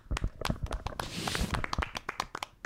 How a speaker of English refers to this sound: I think new podcast rule, whenever we get a win, we clap. So how about that?